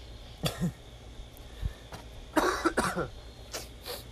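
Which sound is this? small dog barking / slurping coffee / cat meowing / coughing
coughing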